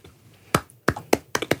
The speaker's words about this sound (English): And I'm done. We just like start rolling slow clap.